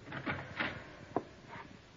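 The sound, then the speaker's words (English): A few soft taps on a jail door, then a sharp latch click as the jail matron opens it, all quiet with no one speaking. “I tapped on the door, and the jail matron let me in.”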